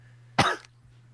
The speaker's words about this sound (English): By the way, I apologize if you hear coughing because I am sick.